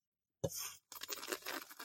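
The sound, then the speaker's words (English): A loud, airy slurp of coffee sipped right up against a microphone: a short first sip with a soft thump, a brief pause, then a longer, hissing, bubbly slurp that continues to the end. No talking. “I have coffee that I'm now going to sip loudly, ASMR-ly, just...”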